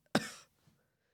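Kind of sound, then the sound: human body sound, cough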